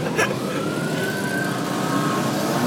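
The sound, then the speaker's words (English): A police siren wails steadily amid dense traffic rumble as police come by during a motorcycle event cavalcade outdoors, holding a sustained tone that shifts slightly in pitch as vehicles pass. “It appears to be some kind of motorcycle event. And the cops have just actually came by, are swinging by.”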